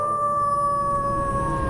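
A wolf howl, long and sustained at a fairly steady pitch, rings out loud with no talking, filling the whole short moment, in a Halloween promo for the internet station Hound Radio.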